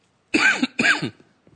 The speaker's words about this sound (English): I'm sorry, I'm coughing a lot more than I expected.